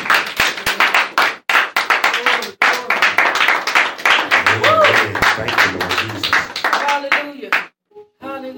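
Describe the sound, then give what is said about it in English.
An audience claps their hands in praise, a dense, lively burst of many people clapping together with scattered voices mixed in, fading out near the end. “Y'all come on and give the Lord a hand clap of praise.”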